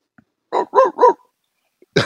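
A dog barks three times in a quick, even, loud burst, followed by a brief pause and the start of another bark at the very end. No one speaks.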